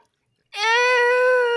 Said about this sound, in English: Suddenly, Veruca screams in reaction to seeing what appears to be little people on the other side of the river.